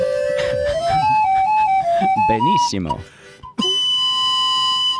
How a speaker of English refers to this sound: This is like a pan flute for tards because you don't even have to blow it very well. It's already got the little like mouthpiece that just sort of blows the air across it. Perfecto.